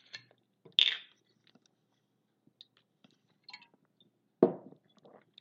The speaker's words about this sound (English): I got some spring water right here. I'll take my cap off.